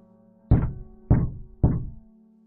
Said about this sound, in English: I laid in the dark, shivering, until I heard the gentle knocks. There were three of them at a time, not fast or slow, not hard or gentle. They were just there.